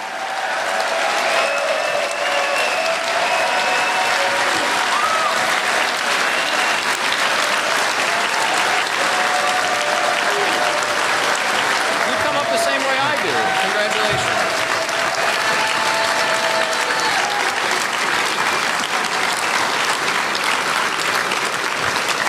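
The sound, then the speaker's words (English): Loud, sustained applause from a large crowd standing for presidential nominee Governor Gary Johnson, a dense steady wash of clapping lasting over twenty seconds, with scattered cheers and whistles rising above it. “Everyone, please stand and give a round of applause for the nominee for President of the United States, Governor Gary Johnson.”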